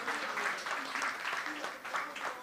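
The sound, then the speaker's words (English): Steady audience applause fills the whole stretch, a dense, even patter of many hands clapping at once, with some crowd voices mingled into the noise. “You get a round of applause for that.”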